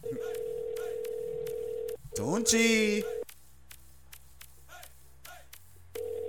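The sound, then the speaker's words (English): A phone call ringing out: a steady electronic ringback tone sounds for about two seconds, breaks off through a brief warbling noise and a quiet pause, then starts again. “Let's call her. Let's go.”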